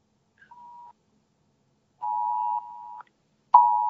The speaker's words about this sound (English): Amber alert on my phone. Oh, okay. Sounded like the EBS test.